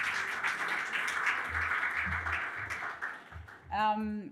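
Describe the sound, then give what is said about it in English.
A crowd applauds a panel that includes Matthew Mott and Paralympic gold medallist Louise Sauvage. The clapping is a steady, dense wash that lasts several seconds and is fairly loud, and a voice starts speaking at the very end. “Sorry, but huge round of applause for this panel, please.”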